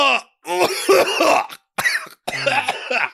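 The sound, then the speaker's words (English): Several harsh, raspy coughs from a man come in quick bursts, with brief silent gaps between them and a throaty, rough quality throughout. “Don't cough on me, please, sir.”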